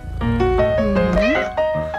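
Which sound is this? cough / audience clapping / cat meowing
cat meowing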